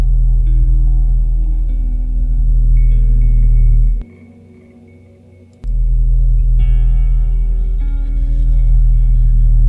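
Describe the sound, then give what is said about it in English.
A deep, droning blue whale call, steady low tones with an almost mechanical hum, broken by a brief quiet gap before the moan resumes with faint higher harmonics. No talking. “That's the sound of the largest living animal on the planet. It's a blue whale.”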